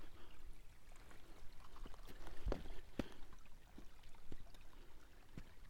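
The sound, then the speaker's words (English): Steady flowing river water in a video game fills the background as the player crosses it, a soft continuous rush with a few sharper splashy clicks around the middle, fairly quiet and without any voices. “Oh damn, I'm going over like a river.”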